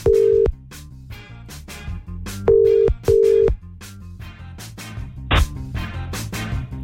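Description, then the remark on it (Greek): Short steady telephone tones sound in bursts as a phone call is placed, three clear beeps repeating like a dial or ringback signal, over a bed of rhythmic background music with no talking. “Πάμε, πάρουμε το Βαγγέλη τηλέφωνο.”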